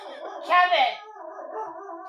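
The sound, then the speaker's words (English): A dog howls inside a house: a loud, wavering cry peaks briefly, then trails into a lower, drawn-out moaning whine that lasts about two seconds. “Hold on, there's a wolf in our house.”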